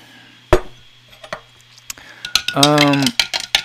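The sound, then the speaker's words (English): Someone stirs a chunky, herbal, iced-tea-like drink to break up chunks that aren't dissolving: a series of sharp, irregular clinks and taps of a spoon against the cup, with a short hummed voice sound partway through. “And some of the chunks aren't breaking up. That's why I'm stirring it somewhere.”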